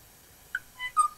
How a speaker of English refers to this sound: This is a song recording of a male o'o singing on Kauai.